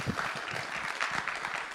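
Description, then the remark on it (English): A crowd at Revive claps in a steady round of applause for the announcements, the reading and the people who make Revive happen each week, dense overlapping hand claps forming a continuous wash of sound at moderate loudness with no voices standing out. “Can we give one round of applause, please, both for announcements, for the reading, and for all the awesome people that make Revive happen each week?”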